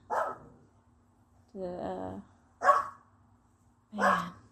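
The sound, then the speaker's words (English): A dog barks four times at uneven intervals, each bark a short, full-throated burst, moderately loud, with quiet pauses between and no one talking. “See, even the dogs”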